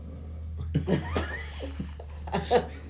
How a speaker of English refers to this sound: I hope see, that came through. It was just weird silence. The dog snoring there.